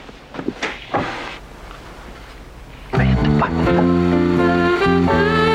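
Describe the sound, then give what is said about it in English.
A few quick wooden clunks and a short scrape as a desk drawer slides open, then a steady, loud tonal hum with layered harmonics takes over and holds to the end. “Hit the button on the left of the desk drawer.”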